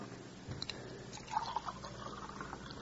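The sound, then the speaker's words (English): Water pours briefly into a glass, a soft splashing trickle with a faint rising gurgle in the middle, fairly quiet, with no one speaking. “And a little water, honey.”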